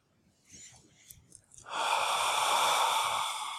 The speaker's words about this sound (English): And breathing out, of course, you're allowed to breathe in. That's very important also for the yin yang of things. But breathing out, a little more emphasis on the releasing, the letting go, the decontracting, the opening the tight aperture